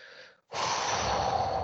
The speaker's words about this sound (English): Heavy breathing.